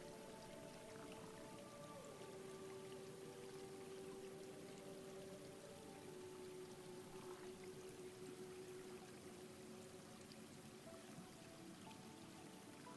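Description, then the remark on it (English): A steady, continuous wash of flowing water, like a running stream, with an even rushing texture and faint low tones beneath it. No one speaks. “The water is still there.”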